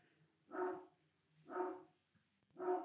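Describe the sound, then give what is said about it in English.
A big black Labrador barks three times at a steady pace, about one bark per second, each a full, deep woof with nothing else happening in between. “sorry, my dogs are going crazy.”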